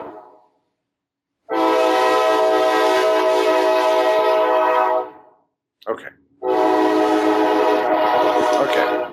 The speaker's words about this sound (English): But I have this constant train problem. But the good thing is that the train comes and it goes. And unless it hits somebody. Then it comes and stops. Either way, the sound will go away. It'll be gone in a second here.